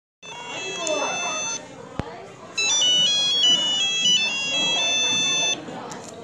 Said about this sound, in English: Was that your phone